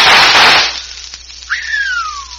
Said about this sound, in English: Smashed it. 3 of them before they hit the ground. By thunder, that's what I call shooting.